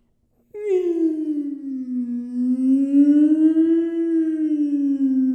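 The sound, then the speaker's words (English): A single sustained vocal wail imitating a siren, starting abruptly and holding a loud, slowly rising and falling pitch for about five seconds, with no other sounds around it. “Do I sound like a siren when I do that?”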